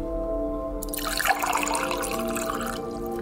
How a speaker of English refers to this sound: So, to prove that plants breathe and to prove that photosynthesis happens, we're going to fill a large bowl with lukewarm water.